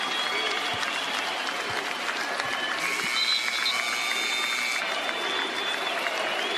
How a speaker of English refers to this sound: Fans recognize that through chanting Kobe.